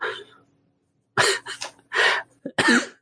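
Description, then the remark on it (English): A person coughs several times in quick, harsh bursts, with a brief pause after the first fading sound, then a tight cluster of hacking coughs ending in a strained throaty cough. “I'm going to apparently cough to death.”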